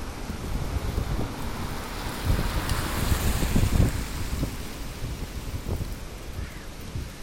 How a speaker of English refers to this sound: Give yourself a point if you said that car was coming from in front and it passed me on my left. So if you're listening in headphones, you should be able to hear where these cars are coming from.